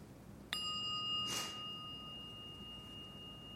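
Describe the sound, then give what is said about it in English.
A single bright meditation bell strike rings out with a clear metallic attack, then its pure tones hum and slowly fade over several seconds, heard alone with faint room noise. “So again, listen to the bell. I'm gonna let it sustain and just listen to it all the way through and stay with it.”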